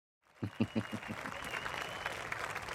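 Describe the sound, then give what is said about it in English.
An applause sound effect: a few distinct, sharp claps at the start quickly swell into a steady, dense burst of crowd clapping that holds at a moderate level. “Drop the claps here.”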